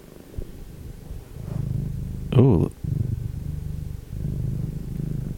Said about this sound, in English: That is the deep purr of our podcat producer, Chloe Cat. She has actually spent most of her time asleep on my lap, and she has just come back for more.